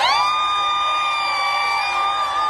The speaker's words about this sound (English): And abortion access is the law of the land in Ohio. Abortion rights activists celebrating the outcome of America's off-year elections.